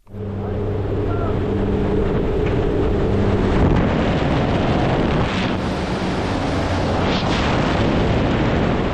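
A 104-year-old woman's record-breaking tandem skydive out of a plane in Ottawa, Illinois: a low droning engine hum under loud roaring wind gives way after a few seconds to a steady, buffeting rush of air.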